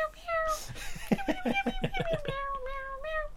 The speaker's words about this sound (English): what are you meowing at? Oh. Oh, that was sweet.